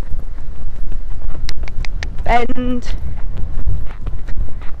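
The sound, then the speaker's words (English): Horse hooves trot in a steady, even rhythm around a circle while a person speaks briefly over the footfalls. “Get your horse to sit,”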